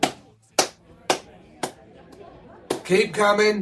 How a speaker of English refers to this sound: Over here, mate. Listen for the claps.